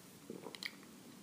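A quick, quiet sip of a home-brewed saison beer: a soft slurp followed by a few faint wet mouth sounds, with no talking around it.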